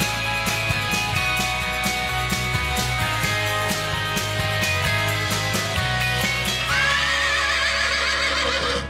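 A horse at a stable lets out a loud, quavering whinny near the end, rising then trailing off, over a steady rhythmic music bed with no one talking.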